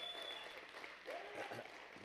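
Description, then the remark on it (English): An audience claps together in a dense, steady wash of hand clapping, with faint voices calling out beneath the applause. “And Jesus Christ, who came and died on a cross, who is the Son of God, could you give him a hand clap?”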